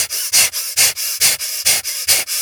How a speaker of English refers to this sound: It's breathing really deeply and fiercely through your nose as you're lifting your arms above your head and snapping them back down with the breath.